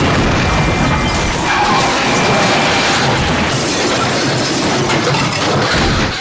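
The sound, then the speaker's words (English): A loud vehicle collision as a black Range Rover runs a red light at high speed on 79th Street and smashes into the driver's side of a car, a violent crunching smash followed by several seconds of grinding, roaring metal and debris noise as it pushes the car down the intersection, with no voices. “As the tourists crossed 79th Street, a black Range Rover barreled across the red light at high speed, smashing into the driver's side of the car.”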